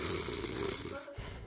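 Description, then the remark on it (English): A person imitates snoring: one long, raspy, rattling breath, a brief pause, then the rough snore starts again. The sound is fairly loud, with no other talking. “I fell asleep reading my Bible and the ink left it written backwards on my forehead.”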